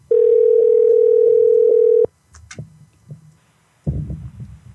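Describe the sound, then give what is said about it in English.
A steady, loud telephone dial tone holds a single pitch for about two seconds, then cuts off abruptly, followed by faint clicks and line noise and a brief burst of rustling. “Let's call this person.”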